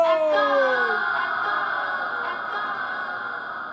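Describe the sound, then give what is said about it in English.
A single drawn-out voiced call of 'Echo!' glides downward in pitch, then lingers as a long, smeared reverberant tail that slowly fades over several seconds, echoing down a large hall. “Why does my echo sound like a woman? Listen to those acoustics”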